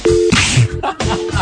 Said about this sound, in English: A dial tone.